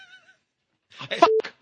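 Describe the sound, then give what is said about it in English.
A single sneeze: a breathy, voiced build-up that breaks into a sharp, noisy burst with a brief tonal tail, then stops. Nobody speaks. “I'm going to sneeze.”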